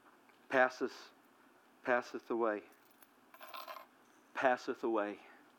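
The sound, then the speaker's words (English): Many keys on a ring give a short, bright metallic jingle, a brief rattle heard between bursts of a man's voice. “I got keys on here, I don't even know what all of them open”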